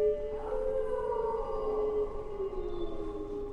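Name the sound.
pack of wolves howling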